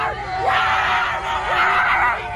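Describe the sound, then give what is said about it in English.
Several leftist protesters loudly imitate dog barks at Trump supporters, with yelping, shouted bursts that rise and fall in pitch, repeating a few times over a steady wash of crowd noise. “Leftist protesters have begun literally barking like dogs at Trump supporters.”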